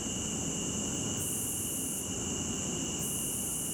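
A cicada buzzes continuously, a harsh, high-pitched drone that swells in regular pulses about once a second, with no voices.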